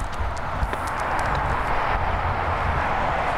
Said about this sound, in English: It's a little noisy with these cars driving by.